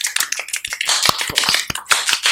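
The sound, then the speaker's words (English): Light, polite golf clapping: a scattering of soft, crisp hand claps from a few people, irregular and overlapping, steady for a couple of seconds with no talking. “Golf clap, golf clap.”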